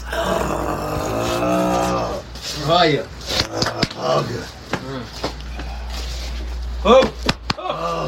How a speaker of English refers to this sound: Sound of men hugging. Hell yeah. Three slaps on the back. Hug.